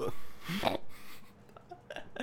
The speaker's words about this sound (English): I have to get a burp again. I'm so sorry. It's okay. Cucumber water does that to me, too.